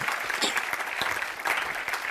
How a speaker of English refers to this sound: Somebody say amen and clap your hands. Will you do that?